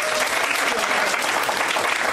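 An audience at a magician's card-trick show claps steadily for a volunteer, a dense, sustained wash of many hands applauding at a fairly loud, even level for about two seconds, with no clear voices standing out.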